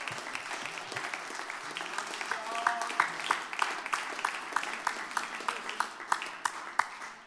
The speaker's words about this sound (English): Thank you, Lord. Why don't we clap our hands to the Lord and thank you.